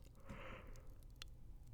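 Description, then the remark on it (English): A single drawn-out yawn, breathy but fairly quiet, trailing off into a few soft mouth clicks and smacks. “Oh, big fucking yawn, man.”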